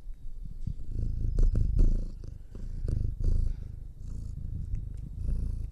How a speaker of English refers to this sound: Oh, I think he's purring.